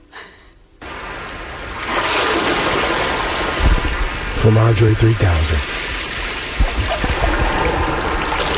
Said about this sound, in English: I added those water sounds.